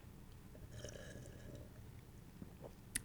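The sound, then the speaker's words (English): A quiet slurp of a chocolate peanut butter porter from Dewclaw Brewing Company lasting under a second, airy and wet, followed by soft mouth sounds and a tiny click near the end, with no talking. “Oh, yeah, I slurped it harder than I should have, but that's for audio effect.”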